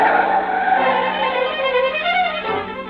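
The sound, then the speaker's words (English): A car is driven off hard in anger, its tires squealing loudly for about three seconds with a sustained shrill whine over the revving engine, no voices. “You keep saying things you shouldn't, and she lashes out with an answer, and before you know it, you've stormed out of the house, and you're taking it out on the car.”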